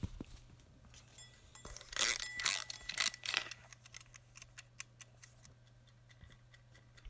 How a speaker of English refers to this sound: So I'm going to settle down in a moment and do that. Let's wind up the timer.